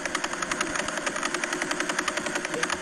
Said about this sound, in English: That's the Veil Pulsar, and it rotates 11 times a second. That's the clicking sound.